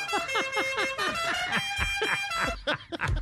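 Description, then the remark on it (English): A rapid, rhythmic string of bright comedic honks, a dozen or so blaring bursts over a steady droning tone, loud, with a few squawky toots at the end. “I think a honk is much funnier than a quack.”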